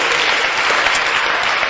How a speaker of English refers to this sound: Clap for Jesus.